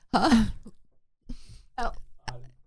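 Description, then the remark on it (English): Someone coughs and clears their throat in several short, rough bursts, the first one strained and voiced, followed by a few quieter hacking coughs with brief pauses between them. “I was coughing back here.”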